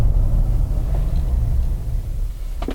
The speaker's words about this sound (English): I'm not going to do a power brake. I'm just going to lift and hit the throttle. And I'm going to late brake. Here's a late brake.